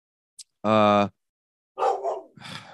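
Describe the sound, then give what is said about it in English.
A dog lets out one loud, drawn-out bark, followed by a brief pause and then a person starting to talk. “So give me 1 second so I can kill my dog”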